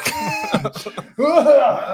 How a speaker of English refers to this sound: So, cough off mic.